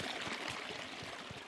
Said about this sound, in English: It's been raining a bit, so you can hear the water streaming down the track. Ooh, she's a bit slippery.